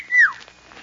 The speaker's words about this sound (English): you're a girl, you don't call him. You just whistle like this.